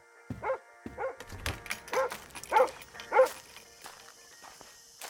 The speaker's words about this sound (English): Oh, would you go see what the bloody dog wants? I can't handle both you and Daisy barking at the same time.